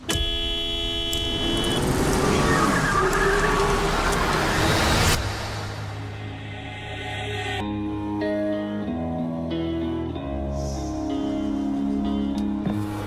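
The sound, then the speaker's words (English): A loud, sustained car horn blares for several seconds, then gives way to a softer, wavering horn-like tone that carries on over a steady rumble. No one speaks. “Don't honk too loud.”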